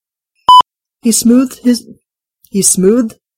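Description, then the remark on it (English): A single short, loud electronic beep sounds near the start of a blooper reel of recording mistakes, followed by a person talking in two brief bursts. “With beeping.”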